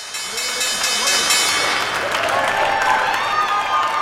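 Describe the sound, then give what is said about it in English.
The Wall Street stock exchange opening bell rings at the market open on Friday the 13th in a steady, sustained clang while a crowd claps and cheers loudly throughout, with scattered voices mixed into the applause. “The opening bell there sounding on Wall Street, and nothing to fear just yet on this Friday the 13th.”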